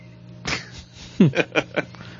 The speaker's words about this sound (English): I'm sorry. I don't know if you guys can hear the cat. Yeah. Yeah, we can. I'm sorry. It's okay. That's Minerva McPonagall. And she doesn't know how to just meow. She just whines.